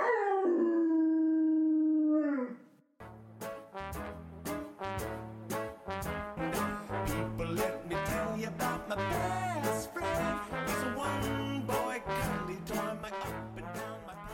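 A single drawn-out dog howl, loud and close, sliding down in pitch and then holding steady for about two seconds before upbeat music with a driving beat takes over.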